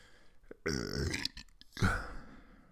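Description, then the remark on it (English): A long, loud, drawn-out burp with a rumbling, voiced tone, followed by a short second belch, made into a microphone, with no talking. “I don't ever burp or fart in front of my wife, but I crack the mic and all I do is burp and shit my pants.”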